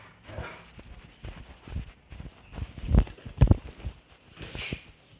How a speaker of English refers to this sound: Sorry about that. My dog never stops barking. For some reason, at this time of day, he barks at literally nothing. Like, there's no mailman. There's nobody walking outside. He's just barking for the sake of barking. And I can never get him to stop.